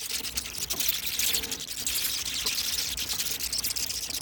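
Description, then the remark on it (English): A dense, continuous chorus of high-pitched cheeping from a great many newly hatched chicks at a battery chicken farm hatchery, countless tiny overlapping squeaks merging into a steady shrill wash with no pauses. “One of them battery chicken farms with new chicks. Oh, millions and millions of new chicks.”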